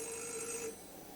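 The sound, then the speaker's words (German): A doorbell rings with a steady, bright electronic tone holding several high pitches, sounding for about half a second before cutting off, leaving a faint background hum. “Es hat an der Tür geläutet.”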